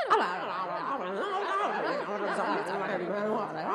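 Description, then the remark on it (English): Audience members at a stage play imitate a lively crowd, many voices overlapping in a steady murmur of chatter with scattered chuckles and snickers, sustained throughout. “A lively crowd.”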